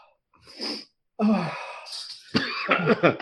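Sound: coughing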